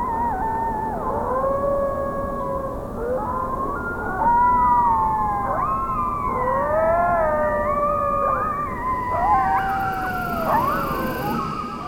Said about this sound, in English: Eastern coyote.